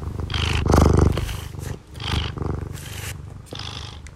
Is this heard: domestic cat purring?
yes